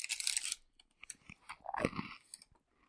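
Crunchy chewing of a crisp cookie, with a loud first bite followed by several irregular crackling chews that fade toward the end, no talking.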